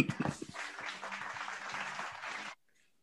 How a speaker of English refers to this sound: Play the cheer.